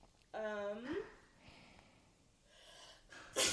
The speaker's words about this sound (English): Bless you.